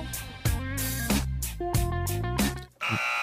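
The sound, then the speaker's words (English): A quiz-show buzzer button is pressed about five times in quick succession after an incorrect answer, a loud, harsh, harmonic-rich electronic wrong-answer tone blaring again and again, with no talking. “I'm going to keep pressing this button.”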